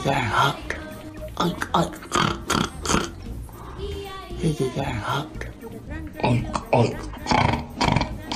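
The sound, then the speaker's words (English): A woman in pig play, wearing a pig nose and a mouth device, imitates a pig with a string of loud snorts and grunts while drooling, repeated in uneven bursts with short pauses between them. “She's also beginning to drool as she snorts.”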